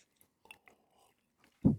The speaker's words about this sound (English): Sorry, I thought you had more to say. That's why I took a sip of my drink.